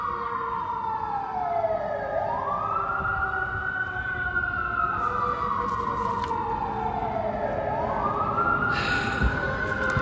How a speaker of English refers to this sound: As you can tell, I think that's siren number 3. I'm about to get ready to go. But as you can tell, I'm outside. Yeah, I'm in a public place.